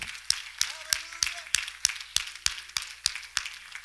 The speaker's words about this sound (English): I wonder if we could give Him one more hand clap of praise this morning.